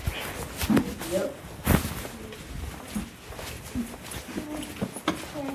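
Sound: footsteps walking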